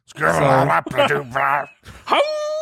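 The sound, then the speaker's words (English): A person scats in a few quick, wordless sung bursts, then breaks into a rising, sustained howl, a voice imitating a wolf, up close and fairly loud. “I need a scat. Like a wolf eating a candy bar.”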